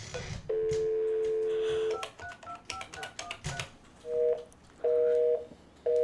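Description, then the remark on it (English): A steady dial tone hums from a new desk speakerphone, followed by clicking buttons and a few short dual-tone keypad beeps as a number is dialed, clear with no talking. “See this new phone? This is a speaker phone. Watch this.”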